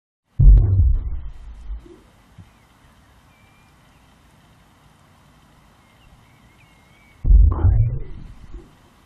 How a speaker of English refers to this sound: Let's start with the heartbeat of a whale.